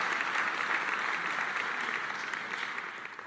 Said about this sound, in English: Keep watching, because the gospel is getting out across the world through the online content. Yeah, you can clap that. Bless you.